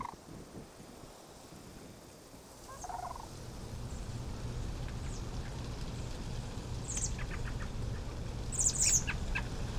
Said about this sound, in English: The sandhill cranes especially, it's fun to hear them.